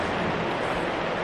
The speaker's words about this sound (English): Kind of like the rain's coming down right now. Or hail, even worse.